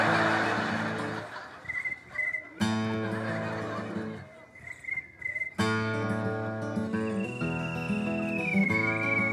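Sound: cricket chirping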